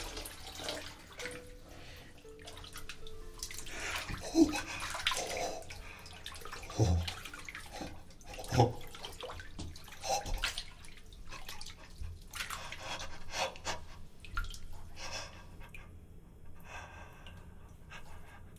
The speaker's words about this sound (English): Instruct the servants to prepare me a bath. As hot as they can. Hot water. Steam!